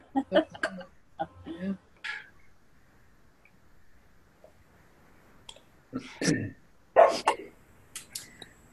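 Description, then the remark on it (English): A dog barks in a few short, scattered bursts, with a louder cluster of barks near the end and quiet gaps in between; muffled voices may be faintly present. “Hey, somebody else has got a doggy.”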